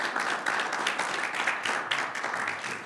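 A church audience breaks into steady applause for a volunteer who watches the door and parking lot during the service, a dense, crackling wash of many hands clapping at once that holds at an even level for about three seconds without anyone speaking.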